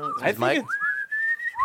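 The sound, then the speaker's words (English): A brief burst of speech gives way to a band member whistling a short tune, a clear, steady high tone that holds and then slides upward at the end. “has a great whistle”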